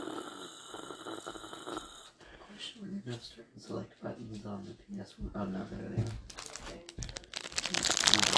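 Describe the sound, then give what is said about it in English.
Crinkling of a Pop-Tart wrapper, done as ASMR, scratchy, building to a louder, sustained rustle near the end, with voices and snuffly breathing sounds underneath. “Oh my god, he's doing Pop-Tart rapper ASMR.”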